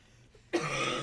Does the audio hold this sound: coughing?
yes